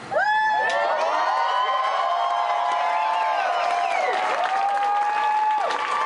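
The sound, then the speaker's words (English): A crowd cheers and applauds loudly after news that the sheriff said there would be no entry tonight, with long, sustained whoops and shouts that rise and dip in pitch over a steady roar, lasting about six seconds without letup. “Definitely reason for applause, and at the same time, we don't trust the sheriff.”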